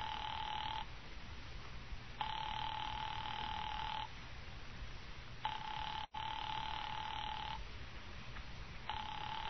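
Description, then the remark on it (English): A telephone call placed through an operator rings over and over with no answer, long buzzing rings separated by short pauses, heard as if down a phone line, with a steady hiss underneath and no voices. “Why didn't she pick up that phone? Your party doesn't answer.”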